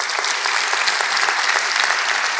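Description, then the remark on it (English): A crowd claps steadily, a dense wash of overlapping hand claps holding an even, loud level for a couple of seconds with no voices standing out. “Let's clap for that queen for that question.”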